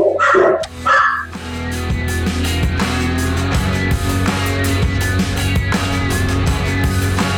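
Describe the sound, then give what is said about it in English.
Two loud dog barks ring out in quick succession at the start, then steady upbeat music with a rhythmic beat takes over for the rest. “My dogs, thank you also.”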